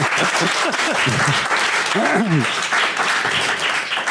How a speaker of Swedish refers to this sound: Så vi välkomnar publiken här. Vi kan få en applåd så hör vi att ni finns här. Ja!